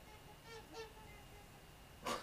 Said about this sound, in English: That was a goose that just flew by my window, if you heard that.